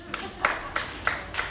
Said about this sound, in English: So we're going to play a little game. So if you think sanctions are working, please clap now.